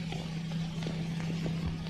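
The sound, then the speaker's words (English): Bill's horse, carrying Bill with ropes tied around him, walks at an unhurried pace as Molly walks alongside, its hooves landing in a loose, uneven rhythm of soft clops. A steady low hum runs underneath, with no voices. “She hurries toward him as the horse keeps walking.”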